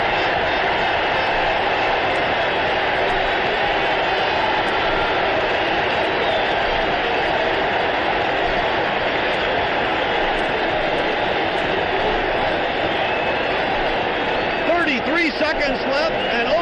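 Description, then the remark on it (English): A huge stadium crowd roars after an Oakland touchdown on a recovered fumble against New York, a loud, unbroken wall of cheering that holds steady for the whole stretch, with faint whistle-like tones rising near the end. “Now listen to this crowd.”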